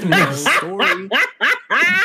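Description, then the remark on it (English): A tiny dog yaps five times in quick succession, high-pitched, each bark short and sharp with brief gaps between them. “Okay, you have a dog, but your dog is tiny.”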